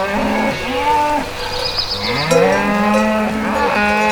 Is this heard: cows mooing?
yes